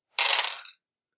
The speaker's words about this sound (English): All right, so I'm rolling 10 dice here. Okay. Come on.